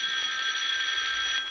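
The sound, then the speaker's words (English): A doorbell rings in one steady, unbroken burst, a loud metallic electric jangle that holds at constant strength for about a second and a half, with no voices over it. “Well, as if I said the doorbell were going to ring this instant and it...”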